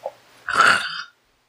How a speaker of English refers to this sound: Sorry, I just gasped.